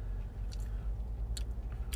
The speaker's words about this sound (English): They're an interesting take on just the regular pickle. Yeah, they are. Definitely gives it another layer of crunch too, which is pretty good overall in this sandwich.